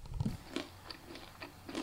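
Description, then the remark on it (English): Crunchy bites and chewing of a slice of flaky, layered fried pancake: an initial crackly bite followed by several sharp, brittle crunches spaced roughly every third of a second, moderately loud with no talking. “It's super satisfying, super crunchy.”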